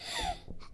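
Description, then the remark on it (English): A quick, small sneeze bursts out: a sharp breathy blast that fades into a couple of soft snuffly breaths, with no talking. “Oh, bless you.”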